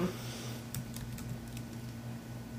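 Quiet, irregular clicks of someone typing on a computer keyboard while looking something up online, a few scattered keystrokes over a steady low electrical hum, with no voices.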